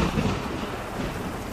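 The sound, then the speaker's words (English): A low, rolling rumble of thunder over a steady hiss of heavy rain, loud and continuous throughout with no voices. “Don't curse the wind. Don't curse the thunder. And definitely don't curse the damn rain.”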